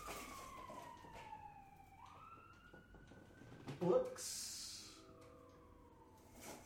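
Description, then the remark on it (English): An emergency vehicle siren wails, its pitch gliding down and then slowly rising again, fairly faint against low background noise with a brief louder clatter partway through. “I can't tell if that's a cop car or if that's an ambulance.”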